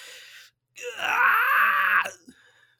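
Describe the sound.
A person lets out a loud, raspy, strained scream like a rock singer, held for over a second with a wavering pitch, then cuts off abruptly, trailing into faint breathy noise.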